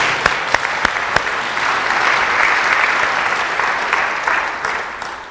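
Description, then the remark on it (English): A church audience on Youth Sunday applauds the youth choir, opening with a few sharp individual claps before swelling into a sustained wash of clapping that holds strong and then begins to thin out. “give the youth choir another round of applause.”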